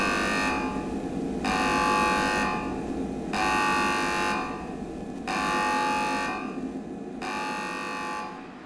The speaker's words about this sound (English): Staff alarm activated.